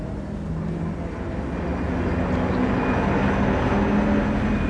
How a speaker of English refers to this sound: No! Wait for me! Stop the train!